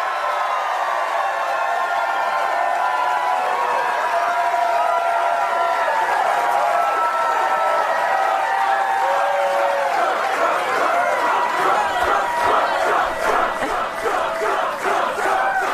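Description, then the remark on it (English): A large crowd of Trump supporters at Karen Handel's campaign headquarters roars and cheers steadily, then settles into a loud, rhythmic chant of "Trump", with voices pulsing together in the latter half. No one speaks over it. “That crowd yelling, Trump, Trump, Trump.”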